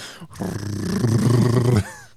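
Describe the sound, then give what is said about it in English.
A voice imitates very loud snoring: one long, rumbling, rattling snore lasting over a second, forceful, then cutting off abruptly. “Jay snores off the Richter”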